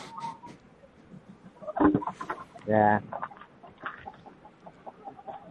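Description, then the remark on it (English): Chickens on a chicken ranch cluck in two loud, throaty bursts with softer scattered clucks around them, while a person briefly speaks over a murky background. “Sounds like chickens clucking.”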